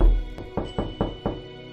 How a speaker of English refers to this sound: A slow and heavy step, which had been heard upon the stairs and in passage, paused immediately outside the door. Then there was a loud and authoritative tap.